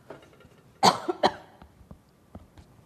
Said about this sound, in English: Excuse me, I need to cough.